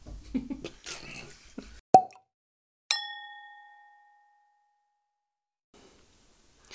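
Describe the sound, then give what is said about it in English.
Australian Shiraz (Mother's Milk from First Drop Winery) gurgles briefly as it is poured into a glass, followed by a sharp pop and then a single bright, ringing ding of glass that slowly fades into silence. “Pour ourselves another glass.”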